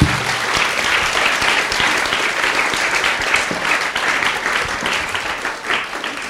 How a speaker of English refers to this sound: Well, I'm afraid that brings us to a conclusion for tonight's panel. Could I please ask a round of applause for our wonderful guys during this voyage tonight?